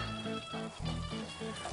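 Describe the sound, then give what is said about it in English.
Sauce heating in a pan gives off a steady, hissing sizzle with a soft bubbling texture underneath, holding at an even level throughout with no voices. “Sauce is about heated up now.”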